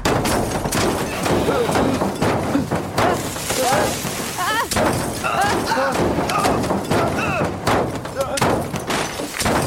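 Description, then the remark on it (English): A skidding car slides down an incline, then flips and rolls into the woods in a violent crash: a loud, continuous run of heavy thuds, bangs and crunching impacts for nearly ten seconds, with voices crying out over the chaos. “And that's what I did, just as the car flipped and rolled into the woods.”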